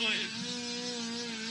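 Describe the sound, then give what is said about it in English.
An electric fan runs with a steady motor hum and a faint buzzing whine, holding an even pitch and loudness throughout with no breaks. “Thank God they brought the fan in.”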